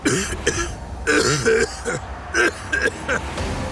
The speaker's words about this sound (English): He coughed viciously.